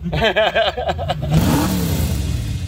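car engine revving

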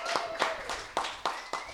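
small applause

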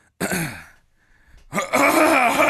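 throat clearing

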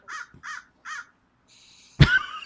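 crow cawing

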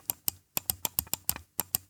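computer mouse button clicking

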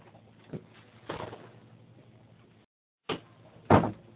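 door being closed

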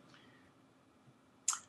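computer mouse clicking

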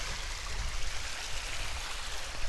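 flowing creek water

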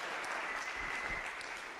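audience clapping

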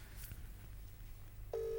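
phone call dialing tones

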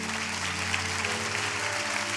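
audience clapping hands

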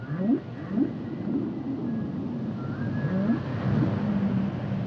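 humpback whale song

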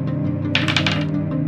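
dice being rolled

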